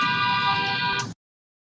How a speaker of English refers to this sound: Dude, that sounds like New York or something crazy. So I don't know why this guy's honking at me.